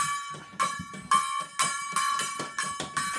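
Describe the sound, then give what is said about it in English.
A gong struck hard again and again, about six loud metallic crashes in quick succession, each ringing briefly with bright overtones before the next hit lands. “The gong's out of tune, sounds like. Well, he's hitting it a little hard.”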